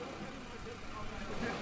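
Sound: car engine idling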